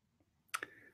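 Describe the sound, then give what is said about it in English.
Two quick, sharp clicks close together, like a mouse button being pressed, against a quiet low background hum with no talking. “And I tried clicking, actually, as I was talking, I tried clicking on different buttons, but I couldn't seem to find the right button to click on.”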